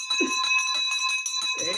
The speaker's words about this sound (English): All right. We got the victory bell ring for you. Here you were listening to the podcast in the past, and now here it is being rung for you, my friend, for your deal that you just did not too long ago.